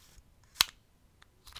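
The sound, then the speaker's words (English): The shutter of a DX01 camera attachment fitted to an iPhone snaps down with one sharp mechanical click, surrounded by a few fainter plastic ticks and clicks, otherwise quiet. “I pop down the shutter.”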